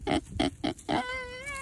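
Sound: pig grunting and oinking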